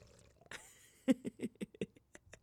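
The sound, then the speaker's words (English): A sip of a drink taken right into the mic, a brief slurp followed by a quick run of five or six wet gulps and swallows, with no talking. “Sip your Celsius, ladies”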